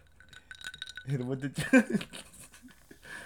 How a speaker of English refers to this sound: This ice, bro, this clinking the ice in the glass, bro,